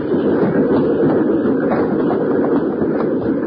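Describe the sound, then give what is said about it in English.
A moving train rumbles and clatters steadily along the rails, a loud, continuous mechanical roar with faint rhythmic clacking throughout and no voices. “He's making for the train, Bill!”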